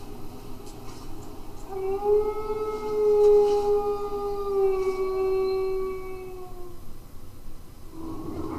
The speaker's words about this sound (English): Getting a flashback to this wolf.